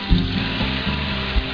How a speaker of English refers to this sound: Once the 2 or 3 minutes is up, reduce the heat to low and add the chicken broth. Cook for an additional 8 to 10 minutes.